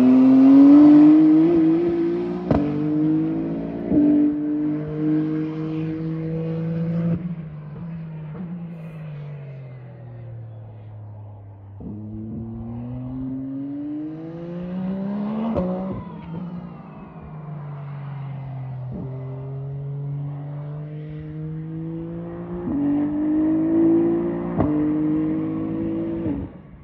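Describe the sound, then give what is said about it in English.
A loud 2021 LMH Toyota hypercar engine revs hard and climbs through several gear changes, its pitch rising, dropping and surging again, with no one speaking. “It sounds, there's some sound of a race car that has penetrated the podcast.”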